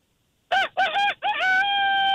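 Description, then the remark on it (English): A caller's voice mimics a rooster's crow: three quick rising syllables followed by a long, held final note, loud, with no other sounds around it. “Hey, …, what bird you got? A rooster.”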